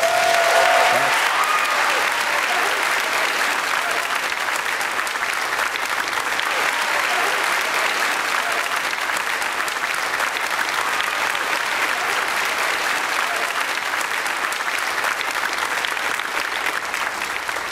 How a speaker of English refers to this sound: I think you ought to give a hand to your pastor, his wife, and his family.